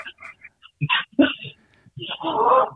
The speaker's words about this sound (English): So, I just had a whole entire family walk in and a dog go wild. Yeah. Yeah. Because that's what he does when anybody walks in. He barks his nuts off.